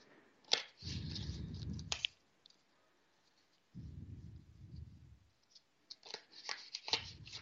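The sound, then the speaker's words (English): Repeated riffling and flapping of a deck of tarot cards being shuffled before a card is drawn, coming in three separate bursts of papery fluttering with soft taps and brief pauses between them. “Yes, taking forever to shuffle.”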